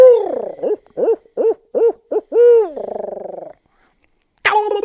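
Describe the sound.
A hunter's owl locator call, used in the morning to locate birds: several short, rising-falling hoots in quick succession, then a drawn-out trilling hoot, a pause, and one more loud call at the end.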